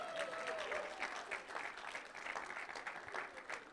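An audience applauds steadily for several seconds, a dense wash of many hands clapping at once, sustained and even, heard from a moderate distance with no clear speech over it.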